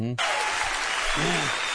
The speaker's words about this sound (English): And they're clapping because it's funny, not because it's true.